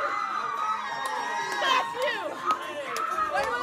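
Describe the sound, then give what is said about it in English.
A protest crowd fighting for trans rights, with quite a few women in it, shouting and chanting, many overlapping voices in a steady roar with sharp high-pitched yells rising out of it every so often. “I just want to point out there are quite a few women in that crowd fighting for trans rights.”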